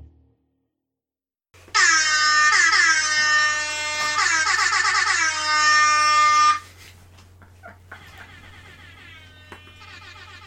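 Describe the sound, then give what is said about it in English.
Loud air horns blare in a long, sustained blast lasting several seconds, followed by quieter, shorter horn toots fading in and out over a low steady hum. “Just air horns now.”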